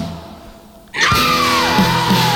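From a played record: after a brief hush, a loud sung yell bursts in over a full rock band, starting high and sliding down, cracking into a deep, sustained baritone.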